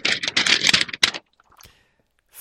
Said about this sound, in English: Right, let me see if the rustle of the paper works.